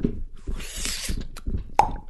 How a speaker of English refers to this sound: Wee, wee, wee, wee. Oh. These are all the sounds the door makes.